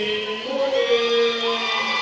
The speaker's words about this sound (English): And you hear those, the crowd in the background letting Hunter Tyson know he is on the road.